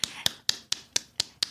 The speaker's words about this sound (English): And so I would like to nominate Alan to get the big clap. I think it's well deserved. Alan, you're getting the big clap.